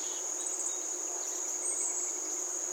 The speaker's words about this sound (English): This is in the middle of the day. And I stopped and took out my camera and videotaped just the audio of the crickets.